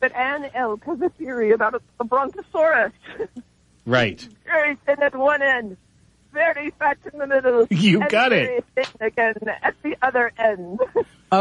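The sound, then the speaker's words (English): Two voices talk over a thin, band-limited phone line. The caller, from Rainier, Oregon, comes through in choppy bursts with brief gaps where the line seems to drop out and return. “now wait a minute, because you're kind of cutting in and out.”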